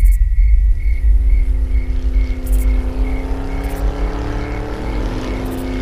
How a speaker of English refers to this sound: that's a car. That's impossible. Not a car. A van. Something's on the roof.